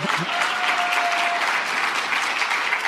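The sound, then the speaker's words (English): A crowd applauds steadily for a few seconds, a dense, even wash of clapping that holds at a consistent volume from start to finish, with no voices standing out above it. “And by the way, when I said we could not have done it without Families USA and without you, that is an applause line for you.”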